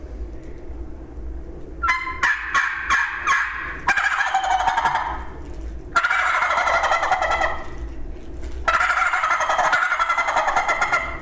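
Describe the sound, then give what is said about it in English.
A turkey gobble produced on a turkey call: a quick series of sharp, rattling clucks building into long, loud warbling bursts, repeated three times with short pauses between. “You know, sometimes you got to play with it to get the best gobble, but I can give you one.”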